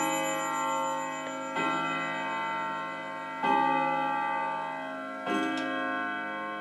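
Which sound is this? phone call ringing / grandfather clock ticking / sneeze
grandfather clock ticking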